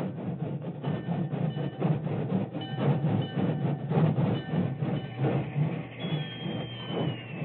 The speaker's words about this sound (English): It was only a short time later, and the rain was barely a drizzle, when an engine whistle announced the work train's arrival on the main track beside the Medicine Hat Telegraph Station.